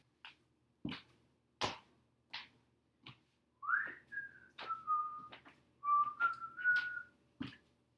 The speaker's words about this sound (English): So is whistling when nobody else is around.